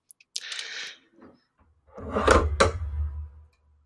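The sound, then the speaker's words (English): A cat clambers over computer gear: a brief rustling scrape, a pause, then a louder, longer stretch of thumping, sliding and clattering, with no one talking. “cat trying to crawl across technology.”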